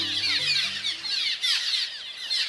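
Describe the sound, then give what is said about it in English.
A dense chorus of calls from a cliff swallow nesting colony, many overlapping squeaky chirps and twitters from numerous birds gathering at once, steady and bustling, with a low musical tone fading out at the start. “Cliff swallows have returned from wintering in South America, and they're gathering in nesting colonies.”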